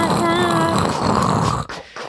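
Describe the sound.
A voice imitates the pneumatic brake clamps of the Big Thunder Mountain coaster, clamps in the track that close and are operated by air: a loud, buzzy, rasping vocal drone for over a second, then an abrupt airy hiss and a short second puff of air.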